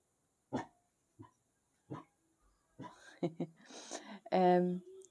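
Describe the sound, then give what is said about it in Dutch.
A dog keeping watch lets out three sharp barks about a second apart, then falls quiet as a person starts talking, with a short drawn-out whine-like sound near the end. “De hond is even aan het waken. Hou eens op.”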